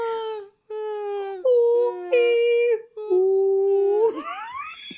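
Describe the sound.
A voice imitates drawn-out, whale-like moaning, like Dory trying to speak whale: a series of long, wavering tones that hold and shift pitch, ending in a rising, strained wail, loud with no other talk.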